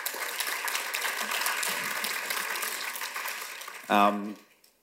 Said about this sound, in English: I'll just take the applause a minute. Everyone appreciated that.